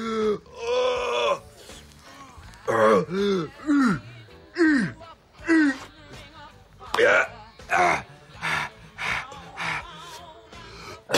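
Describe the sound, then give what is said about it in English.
A run of loud coughs and throat clearing after smoking comes in repeated bursts, some rough and voiced like strained groans, followed by quicker harsh hacking near the end. “It's better to cough.”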